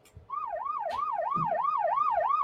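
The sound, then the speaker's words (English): A police siren sound effect, played as a 'boxing police' gag, wails in a rapid, steady up-and-down yelp, loud and continuous for about two seconds after a few brief low thumps at the start. “That's a fact. The boxing police.”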